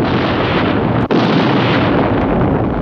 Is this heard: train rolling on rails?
no